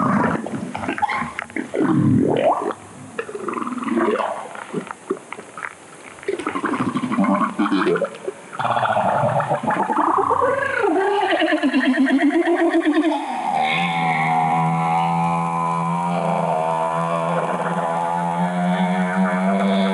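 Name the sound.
humpback whale vocalizations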